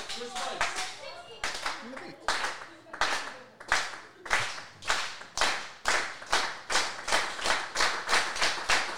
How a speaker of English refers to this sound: ah, let's get a slow clap going.